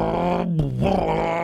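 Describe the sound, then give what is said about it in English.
A person vocally imitates a V8 muscle car engine with a loud, continuous throaty growl that dips and swells in pitch partway through, lasting about a second and a half. “my impressions of cars suck. But I love the old V8 muscle cars.”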